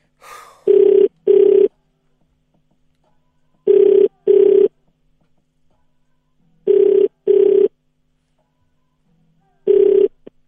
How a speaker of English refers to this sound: Right. Here we go. It's ringing.